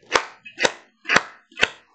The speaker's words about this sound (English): so we're going to do something that's very unreserved, and that's going to be awkward, but we're all going to be awkward together. So that's like the safest kind of awkward space you can be in. And I just want us to begin clapping.